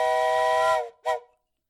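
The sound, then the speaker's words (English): A steam whistle blows a strong, steady harmonic blast for nearly a second, cuts off, then gives a short second toot that fades away. No voices accompany it. “In that case, blow that whistle.”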